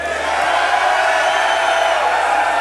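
crowd cheering

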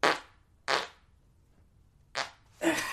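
fart

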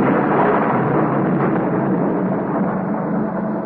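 thunderstorm

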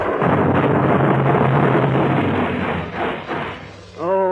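bomb explosion

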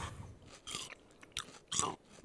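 chewing crunchy food

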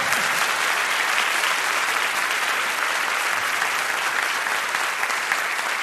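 audience applause

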